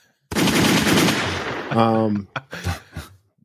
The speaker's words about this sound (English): Let me give them some gunshots real quick.